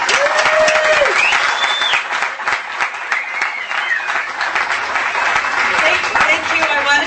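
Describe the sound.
An audience breaks into sustained, dense applause that stays loud and steady for about seven seconds, with scattered cheering voices rising through the clapping.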